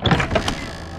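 The door to the third and final room on the second floor creaks open from the hallway in one brief, strained groan with a rough, squeaky tone. It is loudest at the start and fades out within about a second. No voices.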